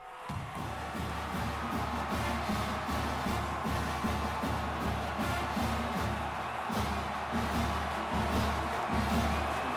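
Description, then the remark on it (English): A large stadium crowd cheers as the football team takes the field before kickoff, a dense, steady roar that holds at an even loudness for about ten seconds, with no single voice standing out. “That looks chaotic, but did you notice how everybody was cheering for the same thing and every member of the team was running in the same direction?”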